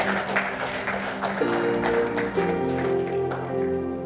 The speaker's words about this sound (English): Give the Lord a good clap of it.